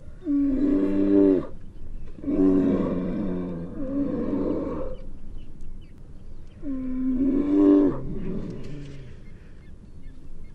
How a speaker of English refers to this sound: Holy cow, here comes a great, huge boar. As this bear comes up again, now listen to that female. The big boar growling right back as it comes up. Man, that is a huge animal. Remember I was saying up to 1,600 pounds?